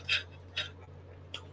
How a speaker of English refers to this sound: So as we were sitting here getting ready for the show, building up, let me get a little water sip.